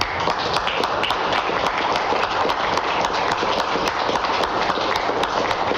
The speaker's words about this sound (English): You listen to those lemmings clapping in the background, but there goes the independence and the freedom that was a right in Canada for so many years.